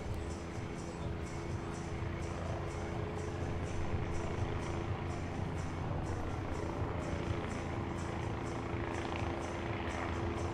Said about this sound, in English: There's a chopper.